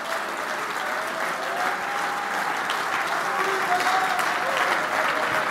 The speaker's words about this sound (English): Come on, is there anybody that feels that way tonight? Stand to your feet and clap your hands and give him a high praise.